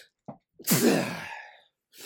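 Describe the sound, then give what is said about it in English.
A single loud sneeze caused by a dust allergy, with a short sharp inhale just before it, then a bright, breathy burst that trails off over about a second. “I got to sneeze.”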